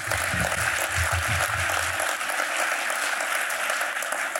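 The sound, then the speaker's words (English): A crowd claps steadily, a dense, loud wash of many hands sustained throughout, with some low rumbling murmurs underneath during the first two seconds. “And those of you who didn't applaud are all hiding the whistleblower.”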